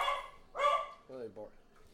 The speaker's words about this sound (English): There's the dogs.